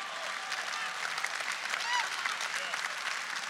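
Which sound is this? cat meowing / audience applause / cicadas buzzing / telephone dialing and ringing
audience applause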